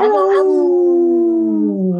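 A dog lets out a long, loud howl that starts with a sharp yelp and slowly slides downward in pitch over about two seconds, with no talking.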